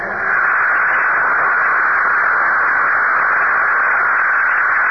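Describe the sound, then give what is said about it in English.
The last supply rocket ship blasting off from the planet Lando, headed for Earth: a loud, steady hissing roar that swells in at the start and then holds constant and unbroken for several seconds, with no voices. “June 3rd, 1997, less than 2 months ago, the last of our supply ships blasted off Lando, headed for Earth.”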